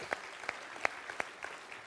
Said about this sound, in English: Why don't you clap your hands and say, thank you, Jesus.